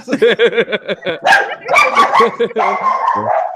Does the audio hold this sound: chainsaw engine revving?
no